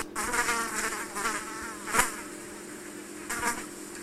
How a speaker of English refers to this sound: Have you ever noticed those little bee-like things that hover around your horse's legs? They just dip into the leg every once in a while and then just dip back out.